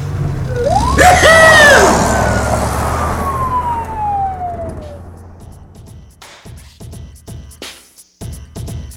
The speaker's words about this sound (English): Can we run the siren?